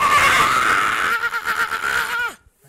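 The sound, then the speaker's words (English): A voice imitates a goblin's pained scream after it is struck in the shoulder by an arrow: one loud, shrill, wavering shriek lasting a couple of seconds that quivers and then drops sharply in pitch before cutting off. “Right into Honey's. It just... screams.”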